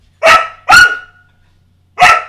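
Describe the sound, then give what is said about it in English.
A puppy barks three times, two sharp yaps in quick succession, then a short pause before a third. The barks are loud and clear, with no talking. “I think Puppy here is trying to say that AP's got nothing left.”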